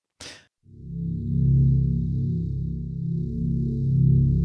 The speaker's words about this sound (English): So we hear the drone music in the background.